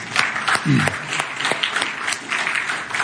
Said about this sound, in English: Bingo. Give grace a round of applause, huh?